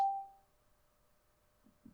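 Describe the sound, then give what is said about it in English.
A single bright notification chime strikes sharply and rings out in a steady mid-high tone that fades over about half a second, followed by quiet and the start of a voice. “Something, a notification woke at it.”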